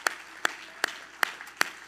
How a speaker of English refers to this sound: Everybody clap your hands one more time to Jesus